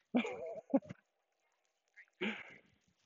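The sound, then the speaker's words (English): A dog vocalizes in two bursts: a wavering, moaning yowl with a quick yip, then after a pause a shorter grumbling call, with no people talking. “We got one last dog talking in on you there.”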